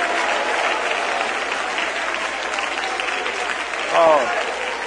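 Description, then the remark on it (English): A church audience claps hands in celebration and agreement in a dense, steady wash of applause that holds at an even level throughout, with a brief whoop or cheer rising out of it near the end. “Would you clap your hands in celebration and in agreement for every single person watching online?”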